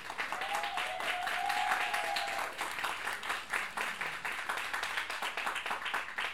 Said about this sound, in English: Let's please give her a warm round of applause immediately.